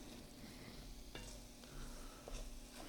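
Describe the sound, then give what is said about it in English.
A dash of bold Tony Satcheries seasoning being stirred into a cooking dish: a utensil scrapes and clicks against the pan in uneven strokes over a steady low sizzle, with no voices. “We're going to mix that in.”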